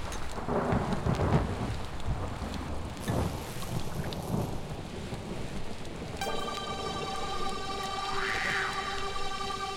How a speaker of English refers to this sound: Pouring rain, thunder and lightning, clash of the titans.